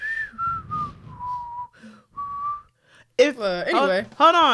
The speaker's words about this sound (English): Looking around the room, I try to whistle.